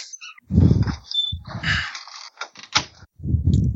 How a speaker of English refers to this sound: Someone just go to the bathroom? No, I close the door.